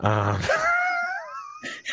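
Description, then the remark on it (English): A child lets out a drawn-out, high-pitched wailing scream in the background, rising and wavering for a second or so before breaking off, preceded by a brief low vocal sound. “Only one screaming kids in your background, huh?”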